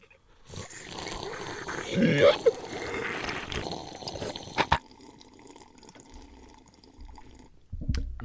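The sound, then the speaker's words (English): Someone takes a long, noisy sip of a drink, a few seconds of wet slurping with a couple of sharp clicks, then it quiets to a low murmur before a brief louder sound. “That might have been one of the best sips of the original 151 episodes.”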